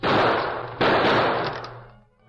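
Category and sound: sound effect, gunshots fired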